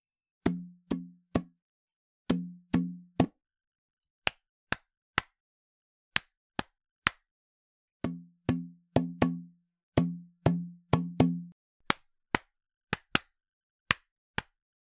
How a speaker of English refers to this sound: This is the rhythm song. Would you like to play along? Clap your hands or stomp your feet. Let's all make a beat.